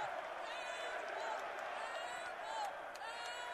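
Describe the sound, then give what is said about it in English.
A large student crowd jeers loudly at a basketball game in the Atlantic Union Bank Center after a 3-point shot misses as an air ball and goes out of bounds: a dense, sustained roar of many voices that swells and holds for several seconds with no single voice standing out. “This one's an air ball, though, goes out of bounds. The students let him have it.”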